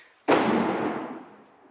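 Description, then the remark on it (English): A single loud firework boom bursts out suddenly, then a broad rumbling roar fades away over about a second and a half, from fireworks set off in town for San Jose's day, booming since 5:55 in the morning. No one speaks. “Therefore the very loud booms that have been going on since 5:55 this morning.”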